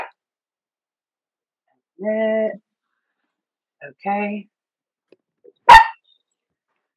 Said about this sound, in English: My dog is looking. He heard my dog, I think. Yeah, they activated each other.